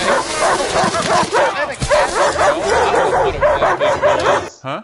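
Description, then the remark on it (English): A dog, Mabel, barks and yips rapidly and continuously, loud, with high excited yelps running together for several seconds before cutting off abruptly. “It's a dog.”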